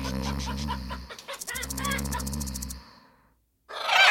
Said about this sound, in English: Oh, go away, noisy ravens. I was trying to take a nap.